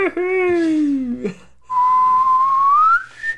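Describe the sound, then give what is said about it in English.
A drawn-out wolf whistle imitated by a voice, loud: a long falling hum-like glide, a short pause, then a thin whistled tone slowly rising in pitch. “Just, yes, just a very, very, very slow wolf whistle as he approached and passed.”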